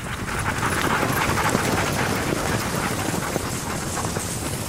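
A steady rush of a dog sled gliding over snow through wilderness at 20 degrees below, on a 65-kilometre stage from Rorosh to Tufsingdalen, with the quick patter of many fresh dogs' paws running up to 15 kilometres an hour and faint rattles, continuous and fairly loud throughout, with no voices.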